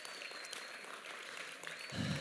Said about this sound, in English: Can we give them a huge round of applause?